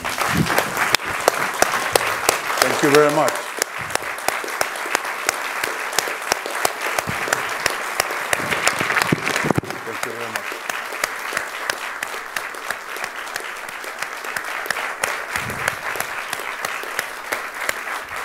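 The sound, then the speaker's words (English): Sustained audience applause for Costa Rican President Rodrigo Chaves at an Institute for Peace event attended by ambassadors and officials: dense, steady clapping from many hands that continues for the whole stretch at an even level. A man briefly speaks a few words over it early on. “I take this applause for the Costa Rican people, not for Rodrigo Chavez.”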